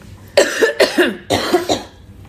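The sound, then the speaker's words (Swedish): A person clears their throat in two forceful bursts with a raspy, guttural quality, with no talking. “Varför är jag så harklig i halsen? Ja, men vänta, vi tar en liten...”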